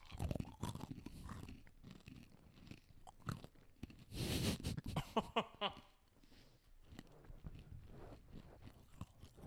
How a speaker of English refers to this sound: I was going to need a praline pecan. Let's both eat one at one point.